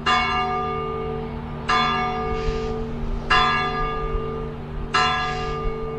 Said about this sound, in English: The bell tower, called Campanile in Italian, was designed by the artist Giotto, better known for his paintings, in 1334. Its bell calls people to prayer.